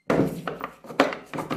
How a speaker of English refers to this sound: Sherlock locked the door and sat down.